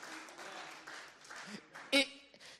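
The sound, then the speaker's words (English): An audience claps in a steady, dense patter for a couple of seconds, with a brief louder cheer or whoop rising out of the applause near the end. “And you can clap for that because that's good stuff, man.”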